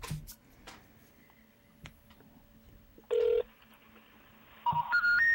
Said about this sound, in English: I'm dialing. It's ringing.